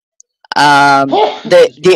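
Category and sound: human body sound, a person sneezing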